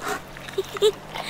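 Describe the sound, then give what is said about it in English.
A friendly dog being petted during a walk gives a couple of short, soft whimpers, brief high whines spaced apart, over a low background murmur. “Even petting a friendly dog like this one.”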